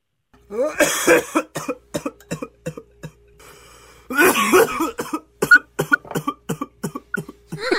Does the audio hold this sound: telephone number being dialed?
no